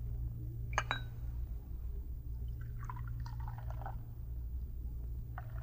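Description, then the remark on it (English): A brief clink of china cups, then coffee streams from a brass urn spigot in a wavering, gurgling pour lasting about a second, all over a steady low hum. “Just turn that brass spigot on the urn.”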